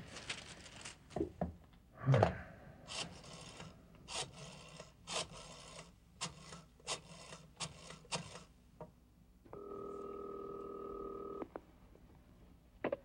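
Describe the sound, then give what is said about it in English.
A telephone number, looked up in a phone book, is dialed to call a Hungarian violinist on behalf of the Rhapsody Restaurant on Main Street: a quick series of short, separate clicks and beeps in an uneven rhythm, followed by a steady tone lasting a couple of seconds before it cuts off. “I'm calling on behalf of the Rhapsody Restaurant on Main Street.”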